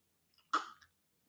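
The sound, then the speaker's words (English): A single short sip of water, a brief wet slurp with a faint swallow after it, heard alone in an otherwise quiet moment. “What the conditions are, excuse me, take a sip of water.”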